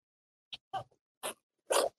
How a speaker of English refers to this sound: Maria, as usual, is fighting with his dog